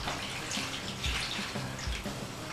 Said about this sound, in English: And then my vinegar and sugar liquid cooled off. Just slowly pour it all over the whole thing.